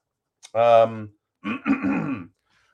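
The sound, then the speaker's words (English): A fairly loud cough in two parts: a short voiced, grunting burst followed by a rougher, raspy hack, with no talking around it. “Pardon that cough.”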